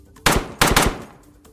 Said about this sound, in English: The gunshots rang out, deafening in the small room, and his body slumped into hers for an instant before the inmate was pulled off.